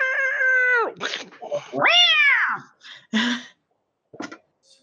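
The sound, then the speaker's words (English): A cat lets out two long, wavering yowls that slide down in pitch, followed by a few short, sharp meows and hisses, loud with brief pauses between. “So 5, 10, 13 damage total from the cat.”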